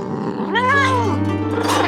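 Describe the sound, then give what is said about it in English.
A single drawn-out cry from Yuki, a white cat, rises and falls in pitch over about a second, clear, over a steady low hum with no talking. “Of course, all of this mattered very little to her cat, Yuki.”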